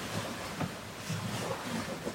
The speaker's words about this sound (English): Let's take a moment, feel into the sounds of the waves.